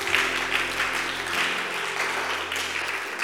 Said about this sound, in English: Clap your hands and say amen.